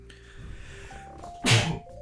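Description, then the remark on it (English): A single sharp, loud sneeze bursts out over a low, steady background hum, lasting only a moment before the quiet hum continues. “Bless you.”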